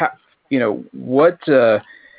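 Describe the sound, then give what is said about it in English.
A person imitates a barking dog with a few loud, drawn-out vocal yelps in quick succession, clear, with no real dog present. “Bark, bark. Bow, wow. Arf, arf.”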